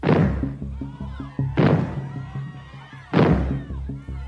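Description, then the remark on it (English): Three loud, booming bangs, a signal used in England to herald the arrival of nuclear fallout, go off at a steady pace, roughly a second and a half apart. Each blast leaves a rumbling, echoing tail that fades before the next one hits. “In England, the arrival of fallout was heralded by a signal made of three loud bangs.”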